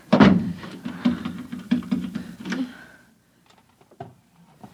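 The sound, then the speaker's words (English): A wooden chair scrapes and thumps as it's shoved under a doorknob, a few quick knocks and a drawn-out scrape, then faint, quieter clicks. “Shoving a chair under the doorknob.”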